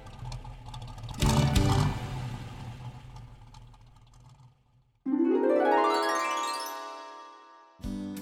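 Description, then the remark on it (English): A little red car's small engine idles with a steady, low purring rumble, briefly louder early on, then revs up with a bright, rising whine that climbs in pitch before cutting off. “"The sound of a happy little engine," everyone said together.”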